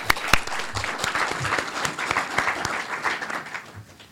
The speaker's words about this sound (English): So with that, let's give a round of applause to David.